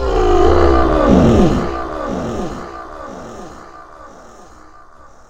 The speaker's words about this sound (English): We all hurried over to the edge to watch him disappear into the darkness, his roar echoing long after he was out of sight.